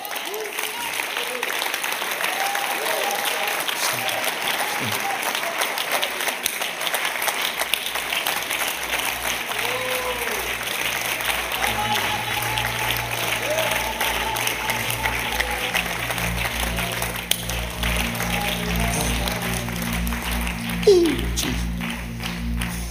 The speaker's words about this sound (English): Don't stop clapping.